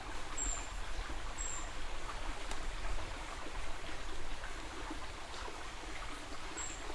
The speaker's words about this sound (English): Creek here. Sure is loud.